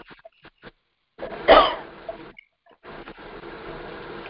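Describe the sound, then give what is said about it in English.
Someone drinks water, with brief sips and handling noises, a sharp throat-clearing burst in the middle, then a stretch of soft rustling. No one speaks. “Sorry. I drink a little water.”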